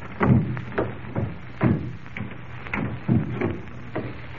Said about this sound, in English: As quietly as possible, they crept up the creaky old stairs.